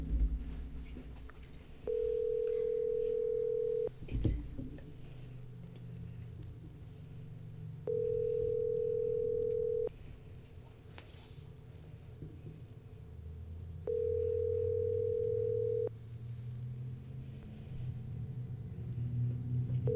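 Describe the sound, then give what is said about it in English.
A phone ringback tone from an outgoing call to a mother sounds three times, each steady two-second tone followed by several seconds of pause, heard over a low rumbling background with faint movement noise. “Okay, so I have to call her first.”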